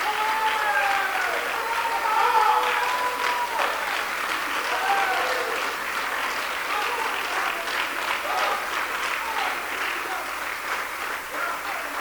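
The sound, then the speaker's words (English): A crowd claps steadily and loudly for about twelve seconds, a dense patter of many hands with some voices murmuring and calling out beneath the applause. “If Israel is clapping your hand, you clap your hand.”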